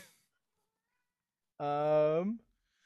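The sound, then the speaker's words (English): A person voices a single drawn-out meow in imitation of a street cat, fairly loud, with a sliding, wavering pitch that falls at the end, after a brief quiet pause. “It's just another street cat.”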